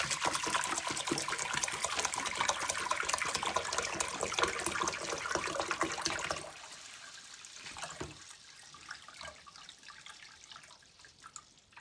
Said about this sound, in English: So I'm just going to, again, I put my finger on the screw. Half my finger is a little bit lower than the screw, and I'm just going to pour the water.